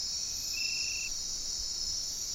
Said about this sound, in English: To witness the ocean's dawn chorus and the song of a humpback whale as it begins its dance, or the hiss of cicadas drifting on waves of heat-humid air.